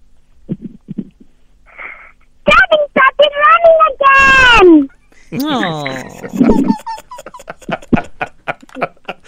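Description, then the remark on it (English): A child's high, sing-song voice imitates a cartoon pig, with squealing rising and falling tones and several short nasal snorts, loud, alternating with brief broken syllables and pauses. “is there anyone that you can impersonate or pretend to be? Yes. Who? Peppa Pig.”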